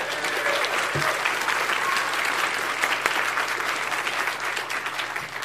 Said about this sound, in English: I've spoken at PAX a couple times, and they've been really great to us. So can we get a round of applause for the staff at PAX?